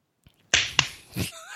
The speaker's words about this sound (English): Is that the sound of one hand clapping? That was a little awkward. I hope that's what it was.